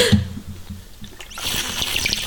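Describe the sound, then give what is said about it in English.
Someone drinks from a water bottle close to the microphone, with low gulping thumps at first, then a bright, continuous sloshing, gurgling rush of liquid that fills the rest of the moment. “Oh, I hate the way that water bottle sounds. Listen, I'm dead serious. Drink out of that close to the microphone so people can hear how annoying this sounds.”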